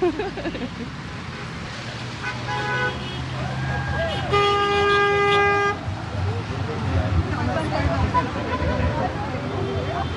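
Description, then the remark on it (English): Several car horns honk over steady traffic on a busy road in Melbourne on a rainy day, drivers honking in support of nurses, with one long, loud blast in the middle and shorter toots before and after, against a busy background of engines and crowd murmur. “My sign says honk your horn for support for the nurses. So there's a lot of honking going on right now.”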